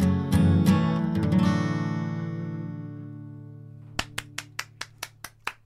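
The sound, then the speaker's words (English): A sustained final musical chord rings out and slowly fades, then about seven crisp hand claps follow in a quick, steady rhythm after the music ends. “Did I start clapping too soon?”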